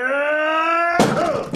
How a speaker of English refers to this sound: You should get that cough looked at. I think dust just got stirred up when you came down.